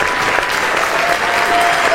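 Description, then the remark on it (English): A crowd claps steadily and loudly for the whole stretch, a dense, continuous wash of many hands with no pauses and no voices on top, keeping up its clapping on command. “And now keep clapping.”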